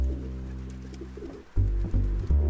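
A flock of spooked pigeons coos in low, throaty, droning calls that swell and break off briefly, then resume louder in a couple of pulsing bursts, with no voices present.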